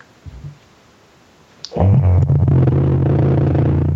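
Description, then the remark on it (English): A moment of near-silence, then a click as a vibrator held up to a microphone switches on, and a loud, steady, low-pitched mechanical buzz with a rattling edge runs continuously to the end. “Hold it up to the mic, and it just, you can hear the sound on that thing.”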